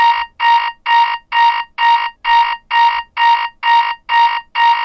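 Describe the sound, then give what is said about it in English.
An alarm clock in a lab rings in a rapid, steady series of loud electronic beeps, about two per second, with no voices over it. “One of your alarm clocks is going off here.”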